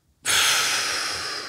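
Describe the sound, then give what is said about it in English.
A single deep breath, demonstrating breath work, an airy, steady rush of air that starts abruptly after a moment of silence and slowly eases off, with no talking. “But where this all comes back to breath work is literally inhaling.”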